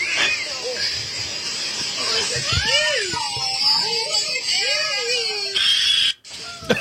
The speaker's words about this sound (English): There he goes, little guy. The caption is, he took a deep breath for that scream. It's our baby raccoon.